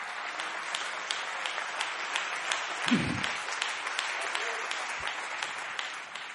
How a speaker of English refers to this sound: Come on and clap your hands right now and give Him praise.